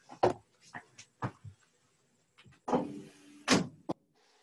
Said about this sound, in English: let me close the window real fast. My bad.